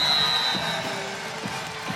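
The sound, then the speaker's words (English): A basketball arena crowd cheers in a steady, loud roar after Sammy Puisis scores a career-high 28 points on a pick and roll and Tulane calls timeout, punctuated by a few dull rhythmic thumps, with a thin high whistle-like tone sounding at the start. “Listen to the crowd.”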